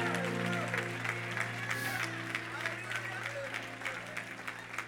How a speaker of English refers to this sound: If you're hungry for a word, clap your hands and give him praise just one more time, please.